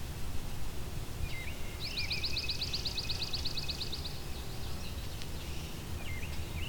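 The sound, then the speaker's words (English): A swamp sparrow sings a ringing trill, a fast, even run of repeated notes lasting a couple of seconds, over a low, steady outdoor rumble, with a few faint chirps around it. “So it's that kind of ringing trill that is the swamp sparrow.”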